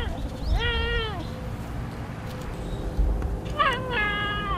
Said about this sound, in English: Listen now to sounds from a clouded leopard.